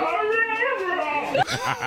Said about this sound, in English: I think they got another clip of the dog. You can hear it in there, yeah, I think. I heard it.